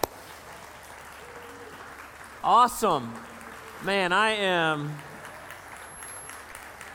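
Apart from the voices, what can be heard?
audience applauding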